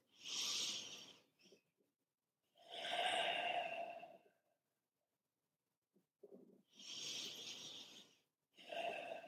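Two slow, deep breaths, each a long airy inhale followed by a drawn-out exhale, separated by brief pauses of silence with no talking.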